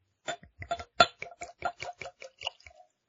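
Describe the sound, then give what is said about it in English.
Bourbon glugs out of a freshly uncorked new bottle into a glass, a quick, steady run of about a dozen hollow gurgles, fairly quiet, with no voices. “The pour.”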